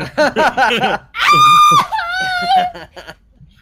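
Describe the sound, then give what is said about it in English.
A loud, acted scream of pain from a single voice: strained vocal sounds, then two sustained, wailing cries that hold and waver before trailing off into short gasps. “I'll scream real, really loud.”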